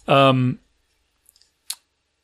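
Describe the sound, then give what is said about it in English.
A short voiced hum, then after a pause a few soft, scattered keyboard clicks, ending with one sharper tap. The typing is sparse and brief rather than a steady run of keystrokes. “And where's my typing? Okay, J keyboard.”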